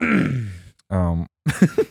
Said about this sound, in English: That's another hiccup.